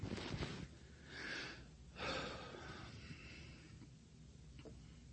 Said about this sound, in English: I wish I didn't have that limitation. But I have trouble breathing.